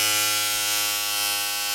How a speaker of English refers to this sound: Yeah, it's a shaver. Either a hair shaver or a beard moustache shaver. Or a leg shaver.